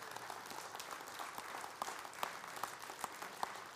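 A church audience gives the Lord a thanksgiving clap, a steady, dense wash of clapping, with a few sharper individual claps standing out toward the end; the applause stays fairly even in loudness throughout.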